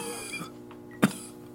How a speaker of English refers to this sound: She began to cough again.